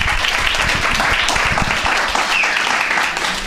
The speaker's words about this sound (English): Either clap like you mean it, or just don't clap.